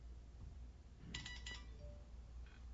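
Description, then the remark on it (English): A mobile phone rings faintly over low background hum: a quick cluster of bright, chirpy electronic tones, then a softer repeat of the ringtone just before the end. “I need to pay for not silencing my phone.”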